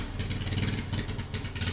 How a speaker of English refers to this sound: What is that noise? I guess somebody's using a lawnmower.